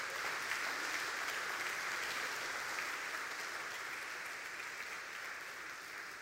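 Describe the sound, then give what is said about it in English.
A standing church audience claps steadily throughout as a clap offering to the Lord, a dense, continuous patter of many hands with no pauses or rhythm, holding fairly even in loudness and easing off slightly toward the end. “Let's stand and give the Lord a great clap offering today.”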